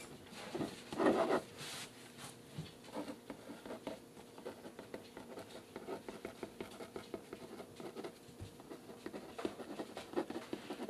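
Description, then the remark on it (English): Pen or pencil scratching across paper as a message is written, a steady run of quick scribbling strokes and soft rubbing that goes on for several seconds with no one talking. “Oh, I'm getting the message that I need to let you finish a sentence. It's being written on a piece of paper.”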